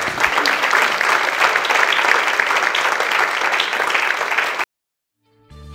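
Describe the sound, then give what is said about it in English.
A crowd applauds with dense, steady clapping for several seconds, then it cuts off abruptly into silence before faint tonal sound begins. “Round of applause.”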